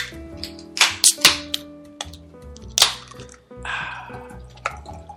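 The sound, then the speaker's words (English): Beer pours into a glass in short splashy glugs, then settles into a softer fizzing rush, all over steady background music. “All right, let's go ahead and pour this in the glass.”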